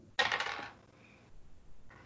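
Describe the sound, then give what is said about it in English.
A quick, bright clatter of two dice rolled onto a hard surface for a game roll, landing on a three and a four, fairly loud, settling within half a second, followed by a faint tick and a soft rattle. “And why don't you give me Demon's Roll at two dice”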